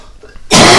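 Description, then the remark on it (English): After a brief hush, a loud, harsh cough or throat-clearing bursts out and holds rough and raspy to the end, with no talking. “He is, as we speak, dying on air. Apparently. Can't get better.”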